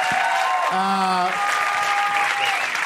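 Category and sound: crowd, round of applause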